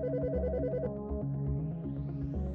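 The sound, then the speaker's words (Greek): A telephone rings at Michalis Chrysafidis's home as factory sales director Antonis Georgiadis calls, an electronic, melodic tone that warbles between pitches in a steady repeating pattern, loud, with no one speaking. “Ο Αντώνης Γεωργιάδης, διευθυντής πωλήσεων του εργοστασίου, τηλεφωνεί σπίτι του για να δει τι έχει συμβεί.”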